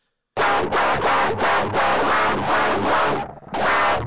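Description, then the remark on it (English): A heavily distorted guitar, detuned as far as possible and run through extreme distortion, chugs djent-style in tight palm-muted bursts with brief choppy gaps, loud, with a thick, gritty tone and no voices. “I have like a classic guitar, but I detuned it as far as I possibly could and ran it through the most disgusting distortion I possibly can.”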